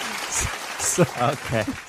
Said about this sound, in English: No, hold your applause. Thank you. Okay. That was a lot of restraint there. Wow. They really did. You could tell that they wanted. Oh, there they go. Oh, they couldn't hold it. They couldn't hold it longer.